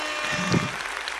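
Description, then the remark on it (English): A short burst of applause for a joke, a dense crackling wash of clapping that stays steady and moderately loud for about a second with no voices over it. “You get an applause for that one.”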